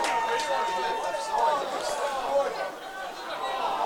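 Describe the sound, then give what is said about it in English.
A large stadium crowd at a football match roars and cheers in a dense, continuous wash of voices, celebrating what it took for a goal, though the goal umpire signalled a behind only, swelling slightly in a few bursts before holding steady. “The crowd celebrated the goal, but the goal umpire signalled behind only.”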